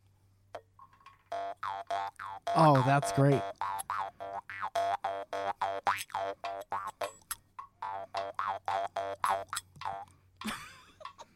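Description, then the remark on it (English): A twangy, buzzing African stick-and-mouth frog instrument is plucked in a long run of short, bouncy notes whose pitch wobbles and shifts, with a brief spoken exclamation near the start. “This is an African stick and mouth frog.”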